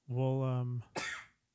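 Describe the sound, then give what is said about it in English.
A single loud sneeze: a drawn-out voiced 'ahh' build-up followed by a sharp, breathy, hissing burst, with nothing else around it. “Bless you.”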